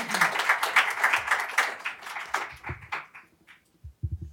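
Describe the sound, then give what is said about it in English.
A crowd at a hearing on book bans applauds the panelists with dense, steady clapping that gradually thins out and fades, leaving scattered claps and a few low murmurs of voices at the end. “And please join me in a round of applause for each of them.”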